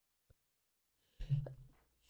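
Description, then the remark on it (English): A single sneeze, a sudden breathy burst with a short voiced tail, fairly loud, after a faint click and near silence; no one speaks. “Sneeze, I'm sorry.”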